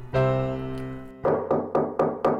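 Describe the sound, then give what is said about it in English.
A sustained musical chord rings out and fades, then Peter Pig knocks on the door of Freddy's house: five firm, evenly spaced knocks in a steady rhythm. There is no talking. “He knocked on the door.”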